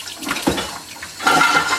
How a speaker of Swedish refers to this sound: Sen häller man på vinet. Kanske. Och sen när det är liksom... Så ska det bara ångas i ett par minuter tror jag.